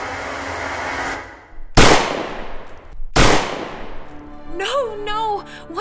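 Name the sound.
gunshots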